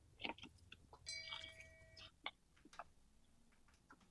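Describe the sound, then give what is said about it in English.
A clock running as a one-minute timer ticks in sharp, quiet clicks over a hushed background, with a brief bright ringing tone sounding near the start before the ticking carries on alone. “There goes our clock. There goes our 1 minute.”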